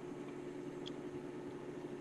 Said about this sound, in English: Wait, oh my god. Whose microwave is that? Yeah, whose microwave is that? And what do they make? What did they make? It might be a frozen burrito.